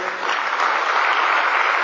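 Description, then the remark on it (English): An audience claps for the Lord together in a steady, dense burst of applause that holds at an even, fairly loud level throughout, with no voices standing out. “Clap for the Lord.”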